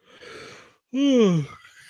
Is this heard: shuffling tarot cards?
no